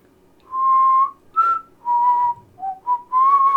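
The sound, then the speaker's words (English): A person whistles a short tune of several sustained notes with small gaps between them, fairly loud, with no talking. “No, but I'm good at whistling.”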